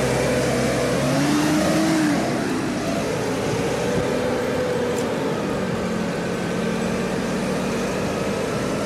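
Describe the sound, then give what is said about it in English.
Steady engine drone of town-centre road traffic mingling with buses, a vehicle revving and gliding past, its pitch sweeping briefly, over a dense continuous rumble of a busy street. “In the centre of town now, mingling it with buses.”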